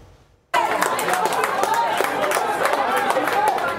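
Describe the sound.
After a brief quiet start, witnesses burst into steady, dense applause, many hands clapping at once, with excited voices and cheering mixed in throughout, as a transportation supervisor embraces a man he has just pulled from transit tracks in Oakland.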